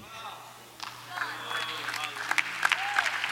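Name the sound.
audience applause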